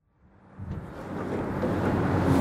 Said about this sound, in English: All right, let's wrap this up, because it's not getting any less windy out here. Fucking fuck. I'm in this kind of, like, industrial park sort of area.